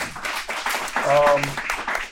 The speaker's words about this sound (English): I want to say thank you on behalf of everybody that's here in our live audience. You guys enjoyed it, yes? Yes. Wanna clap it up, clap it up.